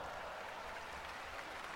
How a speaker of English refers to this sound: Crowd applauding Chono for his efforts.